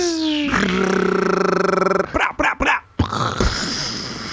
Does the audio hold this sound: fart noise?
no